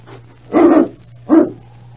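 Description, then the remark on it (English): A dog, King from the radio drama Challenge of the Yukon, barks twice, two loud, separate woofs about a second apart, over a low steady hum. “Why, he was barking before they even got to the door.”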